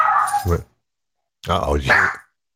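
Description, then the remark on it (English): A dog in a room, about 4 feet from the microphone, gives two short vocal bursts, a bark-like yelp and then a whining, whimpering cry, separated by a second of silence. “Well, the dog is in my room. He's hanging out like 4 feet from it, so I don't think we're gonna avoid that one at all.”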